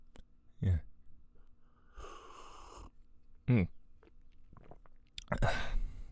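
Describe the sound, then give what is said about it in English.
Slurping sips of hot green tea with lemon, with a couple of soft clinks or gulps in between, followed by a breathy exhale of satisfaction. “And I'm just going to have a sip of my tea now. Ooh, that's good. It's green tea with lemon.”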